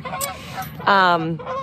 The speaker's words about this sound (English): So I hope you can hear these geese.